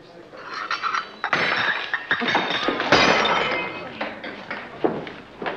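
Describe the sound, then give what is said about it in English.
In a scene from Elaine May's film A New Leaf, a woman drops a teacup, which shatters in a loud, bright crash, followed by a second burst of clinking shards and scattered ceramic clatter, with faint voices underneath. “She's about to drop that teacup.”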